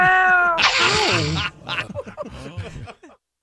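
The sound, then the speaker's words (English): A cat, Mr. Kitty, lets out a loud, drawn-out, strained meow, followed by several shorter, quieter mews that trail off into silence. “Because there's no one else here. Except for you, Mr. Kitty.”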